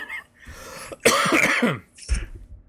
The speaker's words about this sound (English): Still coughing? Yeah, I know. It's been the whole week. Jeez.